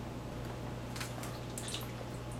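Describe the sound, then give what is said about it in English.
Thick syrupy concentrated Cabernet Sauvignon grape juice pours steadily from a giant bag in a kitchen, with a few soft wet splats and drips over a faint low hum; nobody speaks. “Yeah, see, it pours thick and syrupy like molasses almost.”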